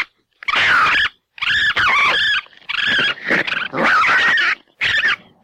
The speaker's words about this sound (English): So next up, we have the sound of fighting raccoons. I do remember at least these first two sounded like we're really blowing out the microphone. So the added audio distortion does make it sound even creepier, but so here's the raccoons fighting.